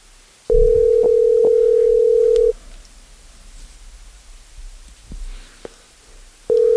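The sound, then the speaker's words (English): A phone ringback tone on a call to a man's phone: a steady, fairly loud electronic hum lasting about two seconds, a quiet pause of several seconds, then the next ring starting. No voices. “Big dummy, he told me to call him at 6.”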